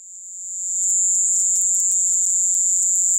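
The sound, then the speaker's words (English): A shrill, continuous insect trill, the echoing call of a Caribbean cricket, holds a piercing high pitch, swelling in over the first second and then staying loud and steady, with a few faint clicks mixed in. “But they make a convincing argument that it actually isn't a weapon, but the sonic attack is actually the echoing call of the Caribbean cricket.”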